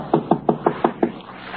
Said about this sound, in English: A short, heavy-set man furtively approaches a home in which all the lights are out. He goes up the front steps quietly. He knocks on the door.